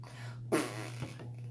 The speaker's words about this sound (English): We should have our husky fart into the phone.